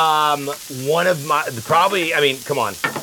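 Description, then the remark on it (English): A burger patty sizzles on a grill as it is pressed once with a spatula, a steady crackling hiss running beneath a man's voice talking over it. “Give yourself a little press just one time with that spatula, just so it's uniform the way it sits on the grill.”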